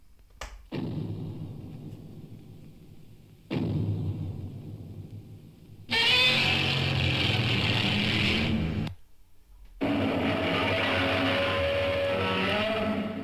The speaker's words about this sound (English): If somehow you've never heard Godzilla's roar before, it is truly unlike anything that I've ever heard before. So, yeah. We were like, what is this? Right. So, this is the 1954 Gojira roar. So, let's take a listen.